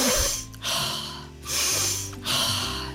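Three slow, drawn-out sniffs of chocolate, each a long breathy inhale separated by brief pauses, with no talking.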